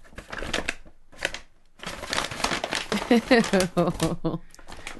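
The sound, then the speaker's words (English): A paper bag crinkles and rustles in a few irregular bursts, with short pauses between, while a voice briefly murmurs over the later handling. “And then it stopped, and all of a sudden, here, where's the paper bag here?”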